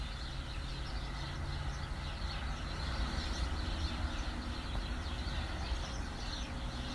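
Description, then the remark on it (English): Outdoor ambience in Chicago on a warm Christmas Day of about 60 degrees, with kids playing in the street: scattered high birdsong chirps flicker above a constant low rumbling background noise, with no clear voices of children standing out. “You hear all the birds chirping. Kids are outside playing in the street.”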